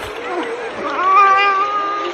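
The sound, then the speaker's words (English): A person imitates a cat with one drawn-out, nasal meow that swells and rises in pitch midway, then holds steady. It is fairly loud, with no other sounds around it. “So it's this. Meow.”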